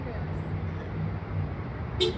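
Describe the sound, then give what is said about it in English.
A person imitates the engine of a Honda CR-V car with a steady, rumbling, breathy drone held for about two seconds, fairly loud, ending with a brief hissy burst. “Let's see if we can line up her sound with a CRV sound, guys.”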